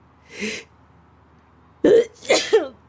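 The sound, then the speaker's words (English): A sharp sneeze caused by allergies bursts out after a brief breathy intake, then trails off into a short voiced sound, with quiet background between; heard in a rented Airbnb in Europe. “Well, may the deity of your choice bless you.”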